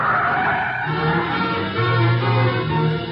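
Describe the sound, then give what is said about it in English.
A car skids loudly to a stop, tires grinding on the road in a steady, harsh rush for about three seconds with a low droning squeal underneath. No one speaks. “Stop the car.”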